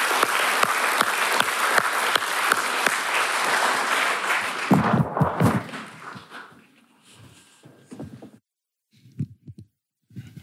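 A crowd applauds loudly with dense, steady clapping for about five seconds, then it thins to a few scattered claps and quiet thumps before fading out.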